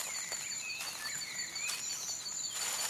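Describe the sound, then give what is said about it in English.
A soft, steady nighttime chorus of crickets and frogs singing in the woods, with high continuous trilling and scattered chirps layered over faint woodland ambience, unbroken with no voices. “Frogs and crickets are singing, but you don't see them.”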